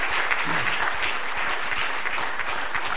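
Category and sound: crowd, audience clapping hands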